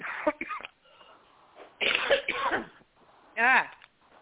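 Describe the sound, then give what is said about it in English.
A person coughs in three rough bursts, a short pair at the start, a longer hacking spell in the middle, then one loud, strained cough near the end; the cough is caused by allergies. “I've had this cough for a very long time. It is my allergies, and they are really picking up.”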